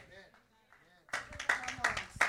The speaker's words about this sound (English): That deserves a big clap right there. Come on, come on. You got better than that.